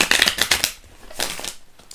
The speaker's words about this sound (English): Whoa, my hand still hurts, so I'm having trouble with the shuffle.